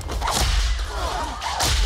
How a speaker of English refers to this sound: So he pulls out the whip and he's... Back.